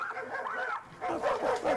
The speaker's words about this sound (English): Now you're barking? Now you're going to bark for yourself?